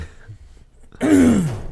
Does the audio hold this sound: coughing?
yes